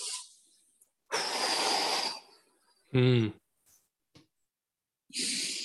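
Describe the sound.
Loud, breathy audible-breathing exhales demonstrated for a hand fighting drill come in separate bursts, one stretching about a second, with a short voiced huff in between and another long breath out at the end.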